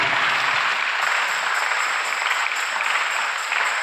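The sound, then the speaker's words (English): A church crowd claps steadily together as a clap offering, a dense, sustained wash of many hands that stays loud and even throughout, with no voices heard over it. “If you're happy with that, give a clap of offerance.”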